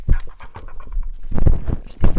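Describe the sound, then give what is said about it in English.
A dog pants and licks the microphone, making loud, irregular wet scraping and rustling bursts with heavy thumps, breathy huffs mixed in and no talking. “The microphone's going to be really close to the dog.”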